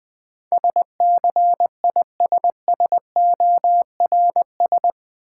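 Morse code sent at about 20 words per minute: a single steady mid-pitched tone keyed on and off in quick dots and longer dashes, grouped into letters, with no voices.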